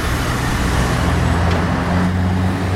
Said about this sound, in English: We're going down Commercial Street. And now we're at the traffic lights. There's no green man.